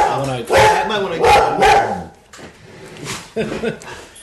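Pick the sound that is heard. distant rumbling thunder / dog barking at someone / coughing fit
dog barking at someone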